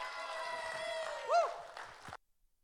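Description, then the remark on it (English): An audience at a church service applauds and cheers for about two seconds as a pastor is welcomed, a steady wash of clapping with a rising whoop or whistle cutting through midway, then it stops abruptly into near silence. “Cheering squad.”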